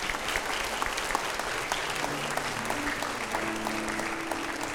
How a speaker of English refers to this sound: People are coming. Hey, let's give them a hand clap as they come.